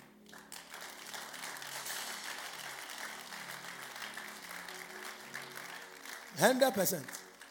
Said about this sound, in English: Give a clap to the grace of God. You don't know why I said you clap.